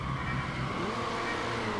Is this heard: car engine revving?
yes